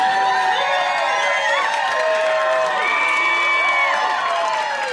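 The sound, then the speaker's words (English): A crowd cheers loudly and continuously, many excited high-pitched voices shouting and whooping together at a steady, intense level for the whole stretch, with no single voice standing out. “I was expecting the crowd to go nuts when I said that.”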